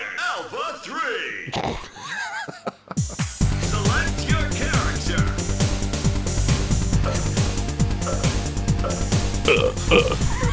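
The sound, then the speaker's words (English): A low, croaky burp-like sound effect gurgles over the opening seconds, then a loud, busy menu music track from an old video game, with steady bass and synth lines, takes over and plays on. “Sounds like someone burping.”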